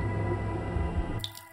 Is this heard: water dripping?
yes